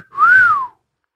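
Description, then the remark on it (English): A person whistles a single catcall-style note that swoops up and then glides down, clear, lasting under a second with no talking around it. “And fucking whistling at our, he was doing cat calls at our liver, you know.”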